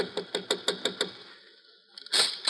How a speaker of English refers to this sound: Hey, wait a minute. Sounds like somebody's knocking on her door.